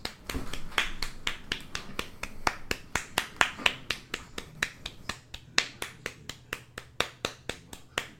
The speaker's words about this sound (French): Je pense qu'on mérite un petit applaudissement de game de golf.